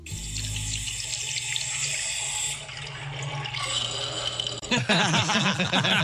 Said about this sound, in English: And you know how, like, when the sink... When like drains or like plumbing isn't working and there's air getting in somewhere and it makes weird noises, like sometimes it's like a glug. Yeah. This one, it says, this sink's drain hates life.